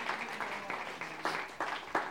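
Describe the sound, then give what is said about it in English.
A church audience gives the Lord a round of applause, a dense wash of many hands clapping with a steady pulse of surges about three times a second, moderately loud and with no voices over it. “If you believe that, would you give the Lord a round of applause?”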